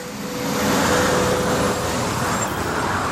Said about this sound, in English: That's a fucking bus.